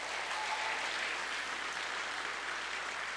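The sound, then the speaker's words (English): Steady audience applause for children at Vacation Bible School fills the whole stretch, a dense wash of many hands clapping at once from a crowd, sustained and even without pause. “Let's give these kids a round of applause again.”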